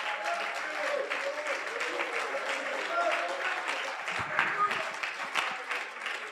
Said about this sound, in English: If you believe that, why don't you clap your hands for a moment?